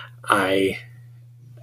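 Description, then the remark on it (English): A single drawn-out meow from a pet cat named Zoe, fairly loud, lasting about half a second, with a low steady electrical hum running underneath and quiet afterward. “My cat has been meowing and has ruined literally 8 takes, so I am just going with it.”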